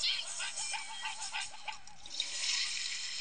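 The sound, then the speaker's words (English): A toilet flushes with a loud, steady rush of swirling water that surges louder toward the end, while faint warbling tones wobble underneath. “He tries to flush him down for poop.”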